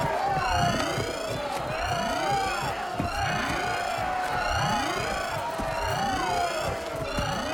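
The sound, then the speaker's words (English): A loud alarm blares continuously, its repeating rising whoops cycling roughly once per second over a dense, chaotic background of overlapping tones and commotion. “Sound the alarm! Get to your weapons!”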